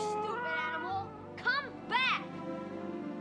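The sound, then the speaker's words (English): Two short, artificial-sounding cat meows from a movie scene rise and fall in quick succession, standing out over a continuous background of a child's voice and muffled noise. “Yeah, it's a very fake-sounding meow.”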